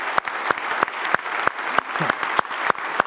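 An audience gives God a round of applause, a dense wash of many hands clapping steadily at a strong, even level, with sharper individual claps popping out in a rough rhythm.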